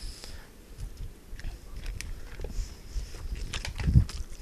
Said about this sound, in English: Don't chew into the mic, dude.